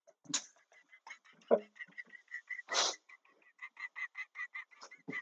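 A bald eagle's screech: a rapid run of thin, high piping chirps broken by two harsh, raspy bursts, loud with no one talking.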